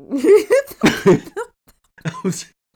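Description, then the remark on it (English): A person laughs in a series of loud bursts broken by harsh coughs. After a brief pause, two more short coughing laughs follow. “Shit, why can't I laugh without coughing like that?”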